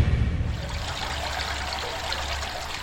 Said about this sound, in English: Okay, so we've come to a water feature now. So this was designed by Andrew Owing, and it's a circular water feature surrounded by zinc, where you can actually sit on the zinc surrounding, and on the top is a large slab, circular slab of granite